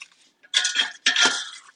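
A wooden spoon flips and rearranges chicken in a pan after about 6 minutes of cooking so it cooks evenly, making two bursts of scraping and clattering over a faint, steady sizzle. No one speaks.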